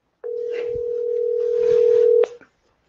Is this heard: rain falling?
no